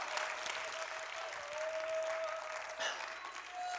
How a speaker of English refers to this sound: Oh, clap your hands and shout it to God. Woo! Hallelujah! Hallelujah!